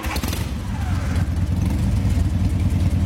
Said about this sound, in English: How about that? Is motorcycle? That a good one?